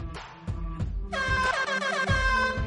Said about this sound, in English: We need a new air horn